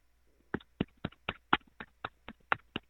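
Around ten quick, sharp smacks of a penis against a phone, repeated at a steady, brisk pace and moderately loud, with nobody talking.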